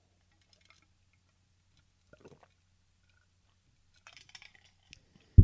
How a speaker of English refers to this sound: I'm going to let you guys think about it while I take a sip of water.